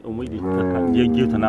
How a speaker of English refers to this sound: Cows eating their morning feed, you know, goats tethered under trees, the busy milking of the cows, the sort of family running around doing all the chores that one would do, but all in a surprisingly urban setting.